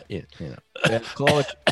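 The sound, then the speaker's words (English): A voice imitates a dry cough with a few short, throaty bursts, fairly loud, mixed with brief voiced sounds and a short pause between them. “Is it the Scotty K dry cough and he's out of here?”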